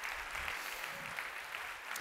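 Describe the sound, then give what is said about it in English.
An audience claps in praise to the Lord in a steady, dense wash of applause that holds at an even level for the full two seconds, with no voices rising above it. “Come on, give the Lord a clap of praise in the house today.”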